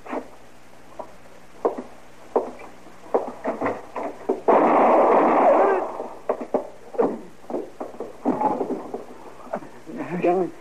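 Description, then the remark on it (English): Gunfire as a man is shot before he gets out the door: scattered sharp cracks build into a loud, dense burst lasting over a second, then trail off into more sporadic shots, with faint voices and bleating-like sounds in between. “They shot him before he got out the door.”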